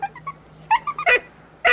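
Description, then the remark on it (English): A dog tied to a tank whimpers in a string of short, high-pitched cries, a few soft whines followed by louder, sharper yelps, with brief quiet gaps between them. “And we see the last thing we see is this dog tied to a tank.”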